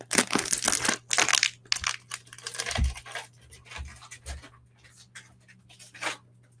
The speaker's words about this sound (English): I have these spring roll wrappers here. They're just made out of rice flour, tapioca flour, water, and salt. Just gonna open this up.